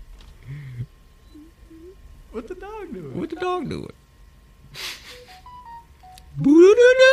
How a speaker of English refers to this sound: the worst part is fucking TikTok changes it on its own. That's not my original notification.